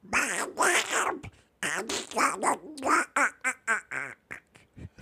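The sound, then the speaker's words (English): A person does a garbled, raspy Donald Duck impression, a fairly loud stream of buzzy quacking syllables that speed up into short choppy bursts toward the end. “Because my Donald Duck is that good.”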